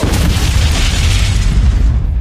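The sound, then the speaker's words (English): A loud, rumbling explosion fills the whole moment, a sustained deep boom with crackling hiss on top that rolls on steadily for a couple of seconds without fading. “So, Bumble, your turn is done, and then there is an explosion.”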